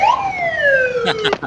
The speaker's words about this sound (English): I had to get the slide whistle clip in there. I've got a soft spot for slide whistle.